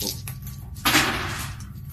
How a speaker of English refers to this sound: That makes me 10. So you're rolling those dice plus 10.